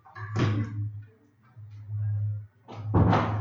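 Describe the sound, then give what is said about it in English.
A door is pushed shut, giving a dull thud followed a few seconds later by a louder, heavier bang, with a steady low hum throughout. “I didn't close the fucking door.”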